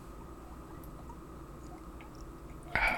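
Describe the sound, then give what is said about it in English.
A short slurping sip of a drink comes near the end, breaking a stretch of quiet low background noise. It is brief and fairly loud, with no talking. “Sippy sip.”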